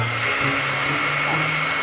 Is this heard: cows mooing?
no